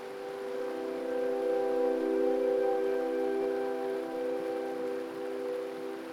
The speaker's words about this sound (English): As you hear the waves lapping up against the sand,